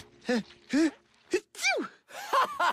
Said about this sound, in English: You sneeze like a kitten.